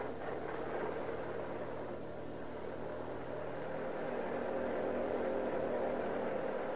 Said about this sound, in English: On a pitch black lane along the main road from San Jose to Oakland is a parked police car. It's wiped out. Quietly, the two occupants watch the infrequent cars that pass the spot. Here comes a car. Turn over your motor.